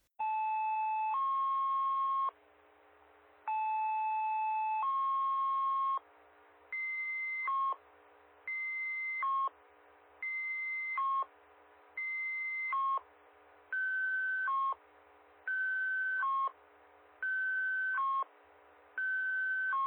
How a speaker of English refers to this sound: It takes 25 seconds for this to go over, okay? Granted, they repeated this a couple times, but just so that some of you who aren't familiar with the actual two tones, let's take a break right now and listen to this set of tones.